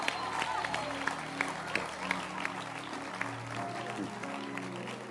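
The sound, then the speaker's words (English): An audience claps, a dense patter of hands that holds steady for about five seconds beneath a murmur of crowd noise and voices. “Then clap your hands for them.”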